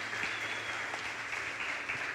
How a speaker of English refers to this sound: So let's give a roaring welcome, a roaring applause